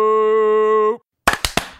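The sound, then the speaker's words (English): A steady, buzzing harmonic tone holds for about a second, then after a short silence three sharp, loud hand claps land in quick succession, struck together in unison by two people in a synchronized clap. “Our synchronized clap, that was the best one I've ever seen in my life.”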